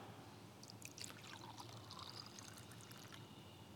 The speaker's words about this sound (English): In the same way, he took a cup, and he took wine, and he poured it out.